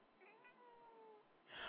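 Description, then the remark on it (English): A cat named Nala gives one drawn-out, slightly wavering meow lasting about a second, fairly quiet, followed by a short burst of breathy rustling noise. “Oh, Nala, the cat is on.”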